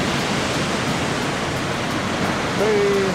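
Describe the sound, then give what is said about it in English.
Ocean waves wash onto a beach in Tijuana, Mexico, at sunset in a steady, loud, continuous roar of surf with no breaks, and a faint thin tone rises briefly near the end. “So for your listening pleasure, we're gonna keep the DJ Ocean sounds going in the background as the camera rolls.”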